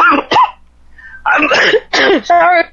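A string of harsh coughs comes in quick bursts, one fit after another, with a short throat-clearing rasp and a brief strained vocal sound between them.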